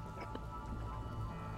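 Heavy driving rain pours down in sheets, a steady, dense wash with a continuous low hiss and soft patter throughout and no voices.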